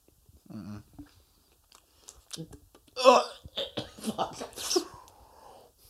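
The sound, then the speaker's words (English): Fairly loud chewing of a crumbly baked pastry with bits of walnut or almond, with irregular crunchy bites and wet mouth noises, preceded by a brief vocal sound. “That's easily one of the worst things I've ever eaten.”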